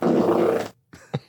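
A loud, low, rumbling fart, played back from a recording made the previous week, lasting over half a second, followed after a short pause by a couple of brief sputtering blips. No talking.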